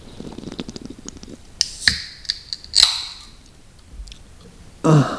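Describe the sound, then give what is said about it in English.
A can of Steel City beer, an Australian pale ale from Newcastle, is cracked open: a few sharp metallic clicks, then a crisp pop followed by a short fizzing hiss, with another brief rustling burst at the end. “So let's give it a crack. You crack first.”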